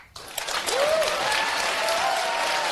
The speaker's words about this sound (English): And the crowd goes wild.